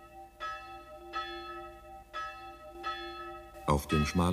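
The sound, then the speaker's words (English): A small church passing bell tolls slowly at the small cemetery outside the Hungarian town of Sopron, knelling for an old man dead for three days: about five evenly spaced strokes whose ringing tones linger between hits; near the end a man's voice starts speaking over the fading ring. “the passing bell knells for old Laszlo Bozo, dead for 3 days”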